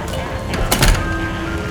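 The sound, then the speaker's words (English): A door is pulled open with a brief scraping rush of sound near the middle, moderately loud over a steady background hum. “I'm going to open the door now.”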